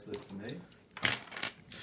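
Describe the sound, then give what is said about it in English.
A handful of dice clatter and rattle across a hard surface in a quick burst of sharp clicks, following a brief murmur of voices. “Well, that's a lot of dice. A whole fistful of dice.”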